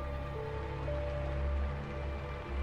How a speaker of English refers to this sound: The rain continued on outside while I sat in grim silence.